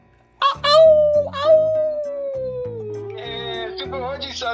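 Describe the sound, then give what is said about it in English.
A person imitates a wolf with one long, loud howl. The pitch slides slowly downward over several seconds, with steady chord-like backing sounds underneath. “Anyways, can I get a howl?”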